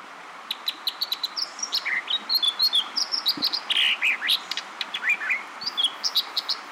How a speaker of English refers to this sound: This brilliant song, ringing out over a rapidly rushing western stream, belongs to an American dipper. A songbird the color of wet gray stones, the dipper looks like a large chubby wren, or perhaps a gray robin with a very short tail.